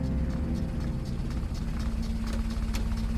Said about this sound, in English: A motor car jerks and shudders in its transition from the smooth main roads to the winding country lanes of rural Derbyshire.